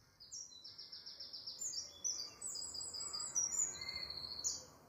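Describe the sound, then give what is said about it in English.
A flock of birds chatters outside, dense overlapping chirps and rapid high trills running nonstop, with no one speaking. “When I try to think about nature in this city, I think of my window in my flat, and I think of the sky and the flock of birds who dance across it, darting and twisting.”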